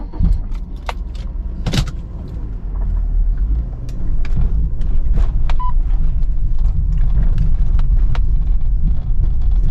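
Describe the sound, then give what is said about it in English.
A car engine is started and rumbles steadily, growing louder partway through as the car gets moving to drive to the beach, with scattered clicks and a brief jingle like keys over the low, continuous drone. “All right, let's fire it up and get out of here.”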